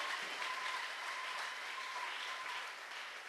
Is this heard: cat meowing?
no